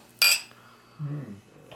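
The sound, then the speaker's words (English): One bright clink of glasses in a Christmas toast with a drink called Silent Night, with a short ringing tail, followed a moment later by a soft, low murmur of a voice. “Cheers, everybody.”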